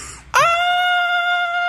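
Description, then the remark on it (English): A sudden high-pitched, girlish scream of someone falling over a pit bursts out after a brief quiet moment, sliding up and then holding one shrill, steady note loudly for over a second with no other sounds. “what kind of scream do you let out as you fall over the pit? A girlish one.”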